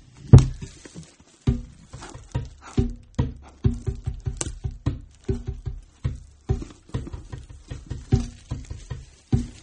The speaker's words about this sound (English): Banging on them bongos like a chimpanzee.